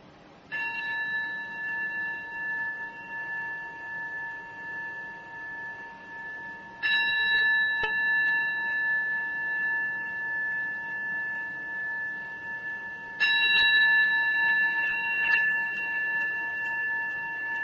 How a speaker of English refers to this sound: And we'll begin by receiving the sound of the bell.